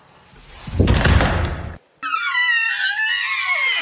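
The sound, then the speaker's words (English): A heavy door slams with a loud, booming crash that rings out for a moment, then cuts off and gives way to a shrill, wavering high-pitched wail. “We slam the door on door number four.”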